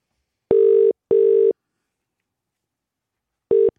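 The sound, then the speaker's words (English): A telephone ringing tone on the line: two steady buzzing beeps in quick succession, a pause, then the next pair begins and is cut short. Clear, with no voices. “We're dialing now and we're about to give away some more life-changing money.”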